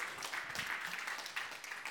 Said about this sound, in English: I actually heard an applause there for a moment, and that just made my heart really happy.